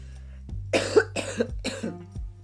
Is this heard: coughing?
yes